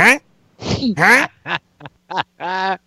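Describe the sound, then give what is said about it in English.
A person imitates a duck with about seven nasal, quacking bursts in an uneven rhythm, some short and clipped, others drawn out, loud with brief pauses between. “Kenny may be whining, but … turns into a duck.”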